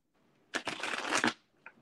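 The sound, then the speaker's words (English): A deck of large universe oracle cards being shuffled, a dense riffling burst lasting under a second, followed by a faint single tap as the cards settle. “Man, them boys shuffling books.”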